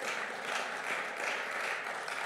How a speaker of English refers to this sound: And come on, we can clap our hands.